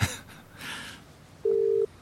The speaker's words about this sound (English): But I dialed 13, 11, 14 anyway.